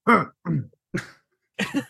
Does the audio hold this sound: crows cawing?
no